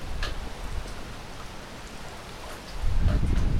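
Steady, hissing rain pours down, and a deep rumble of thunder swells in the low end during the last second, growing louder. No voices.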